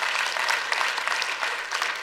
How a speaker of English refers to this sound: Come on, church, don't patty cake. If you're gonna clap, clap.